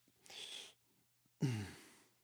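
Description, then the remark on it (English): Two heavy breaths right up against the microphone from someone who just ate a big steak: a half-second airy inhale, a brief pause, then a longer, louder exhale with a faint voiced, sigh-like edge that trails off. “Sorry, I just ate a big steak, so I'm like breathing in the mic super weird.”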